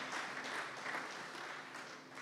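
A church audience applauds in a clap offering for the music ministry, many hands clapping together in a dense, sustained wash of sound that fades slightly at the end.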